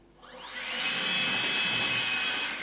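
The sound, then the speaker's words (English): A leaf blower whirs up to speed, its motor pitch climbing quickly, then roars steadily with a loud, airy rush and a thin high whine, no voices present. “All right, now we've got the leaf blower with power”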